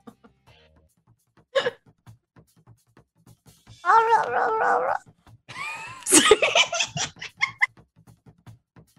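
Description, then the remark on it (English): A person vocally imitates the noises of a giant shark in a tabletop role-playing game: a wavering, warbly growl, then a harsher, breathy burst of gargling sounds, with short clicks and breaths in between. “Shark noises.”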